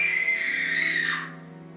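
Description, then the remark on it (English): A single shrill scream sound effect played by the Spooky Scream Halloween skill on an Alexa smart speaker, held steady and piercing for about a second before it drops in pitch and trails off, with no talking around it. “Spooky Scream will play a random scream after a set time of your choosing.”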